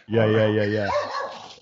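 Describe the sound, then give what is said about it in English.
A dog lets out one loud, drawn-out bark with a howling quality, trailing off into quieter whining sounds, as a FedEx courier knocks on the door. “Oh, FedEx knocking on my door. I'll just let my dog take care of that.”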